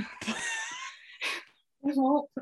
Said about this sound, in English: My body won't let me, guys. Why won't it let you? I've never been able to like fully burp. Can you burp yourself? That's my burp. Like, that's not satisfying.